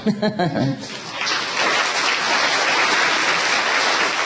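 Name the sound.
audience clapping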